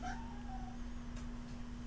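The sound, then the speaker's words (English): A cat yawns with a brief, squeaky whine that slides downward in pitch, fairly quiet, followed by a faint click over a steady low hum. “He's just yawning now. Making weird noises.”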